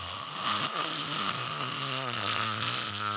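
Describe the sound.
A person imitates snoring with a continuous, raspy, droning vocal rumble that wavers in pitch for about three seconds, fairly loud, with no other talking.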